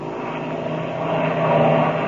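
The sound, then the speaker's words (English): A steady, loud airplane engine drone with a low hum that swells slightly louder toward the end as the plane dives down toward another airplane; no voices. “We're going to dive down and see who that is.”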